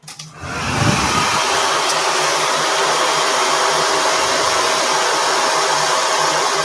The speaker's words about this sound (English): It's a dryer, yes. I'll give it to you. It's one of those hand dryers.